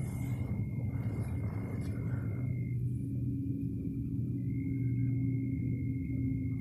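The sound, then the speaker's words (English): A steady, low engine drone of an airplane flying at night, far back over a lake, hums throughout with a faint high whine above it. The rumble stays constant and fairly loud for the whole stretch, with no voices. “These planes going through here again tonight.”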